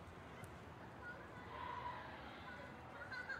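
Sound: children playing and chattering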